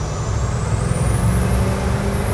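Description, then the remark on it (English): A vintage truck's engine roars steadily, with a heavy low rumble beneath a thin, high turbocharger whistle that climbs in pitch, giving a jet-like whoosh. No one talks. “If you want a jet sound, this is it. Rocket ship.”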